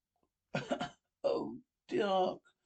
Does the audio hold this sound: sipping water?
no